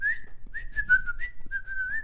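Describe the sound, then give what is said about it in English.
Someone whistles bird-like sounds: a few wavering, fairly steady mid-high tones in short phrases with brief breaks, imitating birdsong over a faint low hum, with no talking. “Give me a moment to look on the floor for it, and while I do that, here are some bird sounds.”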